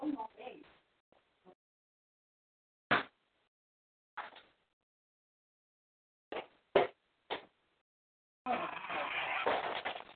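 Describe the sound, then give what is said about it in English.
A door is answered after a knock: several sharp, separate thuds and clicks spaced a second or two apart, followed by muffled voices talking. “now somebody come knocking and but you don't care that they don't want them to weaver you, so you'll go answer the door”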